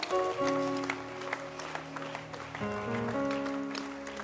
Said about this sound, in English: Oh, your hand clap is not impressive.